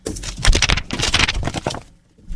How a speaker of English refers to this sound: Your paper sounded more like a note. Because it actually is paper, yeah.